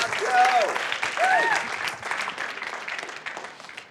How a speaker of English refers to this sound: Everybody give Joe a round of applause. Thank you, Joe.